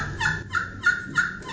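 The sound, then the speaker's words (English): A series of four turkey yelps from a turkey call played with fingers and thumbs laid over its holes, evenly spaced, each a raspy, resonant note with a bright, high tone that drops slightly, fairly loud with no talking. “So when I'm doing yelps or notes, it's real resonant.”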